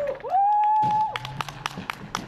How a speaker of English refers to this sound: Cold, wet and hungry, the little boy was allowed a few Oreos and a Snickers bar, then taken to hospital where he was greeted with a cheer.